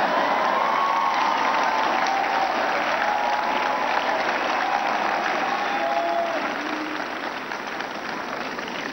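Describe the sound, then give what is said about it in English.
A large audience claps and cheers continuously, a dense, steady wash of applause with scattered whoops rising above it, easing slightly toward the end. “Agbada, you clap. Suit, you clap.”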